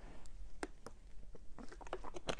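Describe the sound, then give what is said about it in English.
Someone drinking water during a quick water break: a few soft, irregular sips and swallows with small wet clicks, quiet and with no talking. “I'm going to take a quick water break here.”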